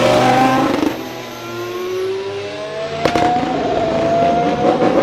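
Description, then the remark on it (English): An AlphaTauri AT02 Formula One car engine, driven by Pierre Gasly, drones loudly, its pitch climbing steadily as it accelerates out of the pits onto the track during an early morning winter testing session, with a sharp crackling pop about midway through. “So that was the AT02 coming out on track earlier in the AM session.”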